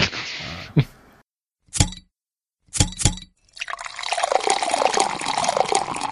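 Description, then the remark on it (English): A beer bottle cap pops off with a brief hiss, a few sharp glassy clinks follow, then a steady pour of beer gurgles into a glass, its pitch rising as it fills. “I'll give you a nice sound bite for me opening my bottle, too.”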